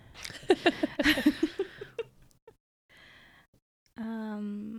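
Close, fairly quiet snoring: a run of quick rhythmic snuffling pulses, a pause, then a longer drawn-out nasal snore with a buzzing tone.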